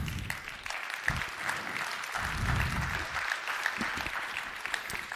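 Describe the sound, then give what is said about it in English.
An audience in a church claps steadily for several seconds, a dense, continuous patter of many hands with a few sharper individual claps standing out, fairly loud throughout with no talking. “If we're going to clap, we all do it together.”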